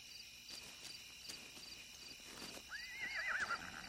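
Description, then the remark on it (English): Hooves clip-clop at a slow, uneven pace before a horse lets out a short, wavering neigh near the end, with a steady chorus of crickets chirping in the background. “It's a horse, all right.”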